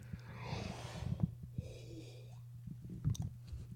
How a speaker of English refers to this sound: Man, I swear I wasn't yawning as much before I started recording, but yeah, man, like sorry.